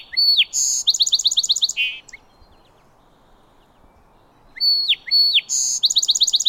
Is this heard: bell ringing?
no